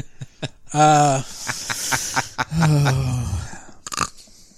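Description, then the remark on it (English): A person snorts twice, loud rough nasal blasts with a grunting, throaty edge, separated by short bursts of breathy noise, with no talking. “You made him snort twice.”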